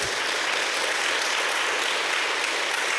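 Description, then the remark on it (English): Steady audience applause fills the whole stretch, a dense wash of many hands clapping at an even, fairly loud level with no voices over it. “oh, thank you for the applause.”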